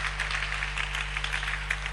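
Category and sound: crowd, audience clapping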